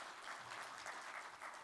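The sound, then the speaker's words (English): A crowd applauds steadily, dense overlapping claps forming a continuous bright patter at a moderate, even level with no voices on top, clapping for the kids who helped as they go back to their seats. “Y'all set those jars down for me right where you're at, and we're going to clap for you as you go sit back down.”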